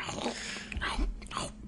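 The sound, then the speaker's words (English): Someone imitates with their mouth the little crunch of biting into food: a few short, crackly bursts, spaced unevenly over a second or so, with no talking. “And then they have like the little crunch when they bite it.”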